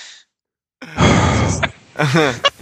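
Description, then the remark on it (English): Loud heavy breathing: a long, rough exhale followed by a shorter, voiced sigh-like breath, with a brief quick intake at the end. “Before the heavy breathing starts to dominate the podcast here, let's go ahead and wrap it up.”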